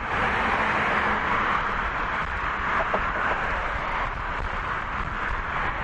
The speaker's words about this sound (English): So we're still going across the Camden Bridge. I'll spare you from the rest of the sounds of the traffic going by.